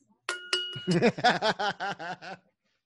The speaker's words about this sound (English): Do a little bell.